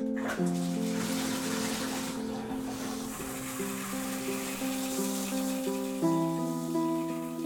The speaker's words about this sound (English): That's the shower.